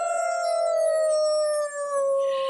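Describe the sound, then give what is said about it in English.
A person lets out a single long wolf-like howl, loud, holding a steady tone that slowly sinks in pitch, with a brief wavering break near the end. “We had to howl there”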